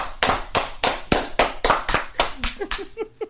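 A slow clap celebrating someone's induction into the Greater Syracuse Hall of Fame: loud, sharp hand claps in a steady rhythm of about three per second, the pace tightening slightly toward the end, where a few voices start to come in under the clapping.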